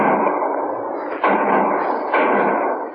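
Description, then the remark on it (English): Three gunshots ring out at a gas station about a second apart, each a sharp crack trailing into a long, rushing, hiss-like decay that fills the gaps. No one speaks. “3 shots. That means trouble back at the gas station.”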